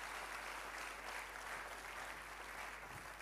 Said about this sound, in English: Your clapping is sick in the house right now.